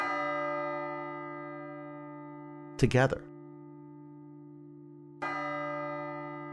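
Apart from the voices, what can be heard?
bells tolling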